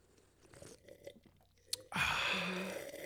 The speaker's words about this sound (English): So let's all take a moment and cheers. Cheers. No real clinking. I'm going to take a sip. Right in front of my mic.